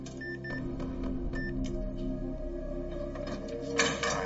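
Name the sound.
vault door opening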